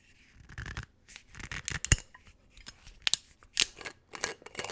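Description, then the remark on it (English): A plastic screw cap being twisted off a bottle of spirits, opened for a first tasting, with a run of short, crisp clicks and scraping rasps in an irregular rhythm, moderately loud, with no voices. “Let's crack it open.”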